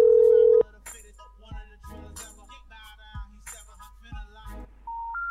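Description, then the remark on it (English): A steady telephone line tone plays briefly, then a quick run of electronic beeps and soft clicks as a call goes out to a number that turns out to be disconnected, ending on a higher, sustained tone. “I'm sorry, you have reached a number that has been disconnected or is not.”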